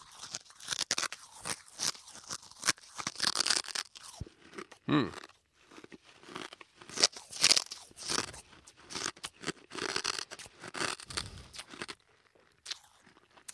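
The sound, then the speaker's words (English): Loud, irregular bursts of crunching as glass is chewed and swallowed, the sharp cracks coming in uneven clusters with brief pauses and no talking. “I'm now going to swallow the glass.”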